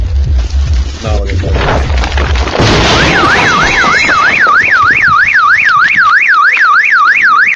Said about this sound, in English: I mean, he just shoveled off his car. You hear a little bit of crumbling. You're like, oh, ice is falling or something like that. And just a cement block falls from the sky. That's a cement block. It just went through the center of his car.